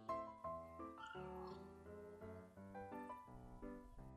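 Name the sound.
cat meowing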